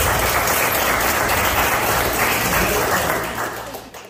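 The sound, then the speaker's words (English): A crowd applauds the guests of a show steadily, a dense wash of many hands clapping at once that holds for several seconds before fading toward the end. “Thanks to all my guests. Round of applause.”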